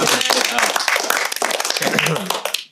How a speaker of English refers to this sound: It's episode 3. Everybody, clap it up.